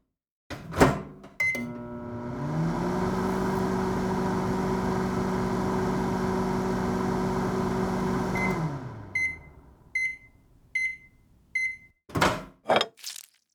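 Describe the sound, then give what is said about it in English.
A microwave oven door clunks and a button press starts a steady electric hum with a low drone that runs for about seven seconds while heating food on a plate, then stops. Four short beeps follow, then a few thuds of the door. “The microwave worked swimmingly this time I used it.”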